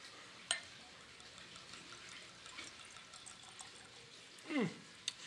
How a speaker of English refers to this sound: Hang on, let me get this cork pop. Oh, love getting that nice sound.